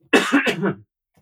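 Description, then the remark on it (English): A single raspy cough lasting under a second, rough and throaty like someone clearing their chest, followed by silence. No talking. “Is coughing a dysfunctional form of breathing or a functional form of breathing?”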